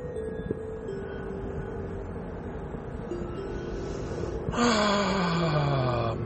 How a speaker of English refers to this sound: Holy craparoon. My car sounds especially bad right now.